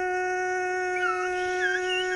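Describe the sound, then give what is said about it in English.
A voice imitates a tornado siren, holding one long, steady, fairly loud wail while its upper tones waver and swoop up and down for about two seconds, with no talking. “Guys, let's do a super tornado siren.”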